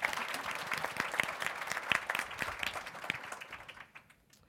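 A crowd applauds with dense, steady clapping that holds for about four seconds, then thins out and fades away at the end.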